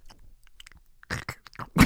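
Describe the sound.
Someone vocalizes Foley, mimicking crunching leaves with their mouth: soft crackly clicks at first, then a few louder, crunchy bursts building toward the end, with no talking.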